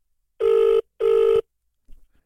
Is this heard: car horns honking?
no